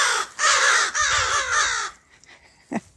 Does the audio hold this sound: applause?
no